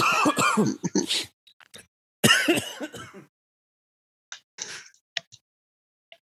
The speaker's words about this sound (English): Yeah, so sorry. Started coughing there.